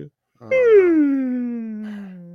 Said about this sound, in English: That was good. That felt real. I felt like I got some oxygen in my brain on that one, honestly. Good job. Got to get it in there. Your fake yawns were just contagious. I actually yawned watching your fake yawns through the screen.